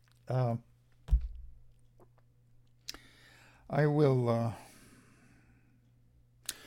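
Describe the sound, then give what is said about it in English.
Someone sips water and lime juice: a brief hum, a soft thud like a glass being set down, a few small clicks, then a long, satisfied vocal sigh. “More water and lime juice.”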